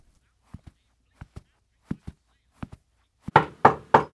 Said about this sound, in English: Knock again.